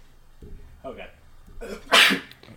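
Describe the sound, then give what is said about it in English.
A single loud sneeze with a short breathy wind-up, coming just after a low, rumbling burp from drinking American beer. “No, there was a beer burp that came out right before I sneezed.”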